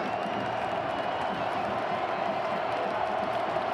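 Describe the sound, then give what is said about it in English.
A huge football stadium crowd of Oklahoma Sooner fans roars steadily after a replayed roughing-the-passer call, a dense wash of voices booing and shouting that holds at a constant level throughout without pause. “That's the Sooner fans. As soon as they replayed that, they couldn't fathom that being called for roughing the passer.”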